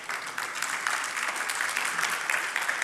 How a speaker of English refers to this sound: Yeah, you can clap.